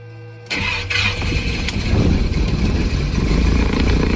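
A small propeller plane's engine, with a LIDAR scanner fixed to the plane's belly, cranks and catches after a moment of quiet, then settles into a loud, steady, rumbling idle with a rapid low throb as the plane gets ready to fly over beaches to scan the coast and ocean floor. No one speaks.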